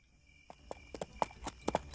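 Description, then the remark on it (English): Irregular hoof clops of a horse shuffling in place, a dozen or so uneven knocks, growing slightly louder toward the end with faint background hum. “I'll concede disappearing an elephant may have been overambitious, so let's start with the horse and work our way up.”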